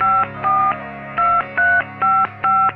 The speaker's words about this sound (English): Today, November 16th, 1963, the Touchtone phone was introduced to the world.